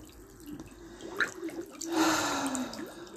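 Water splashes and drips, with a broad watery rush swelling in the middle, then a trickle as a person goes under the water.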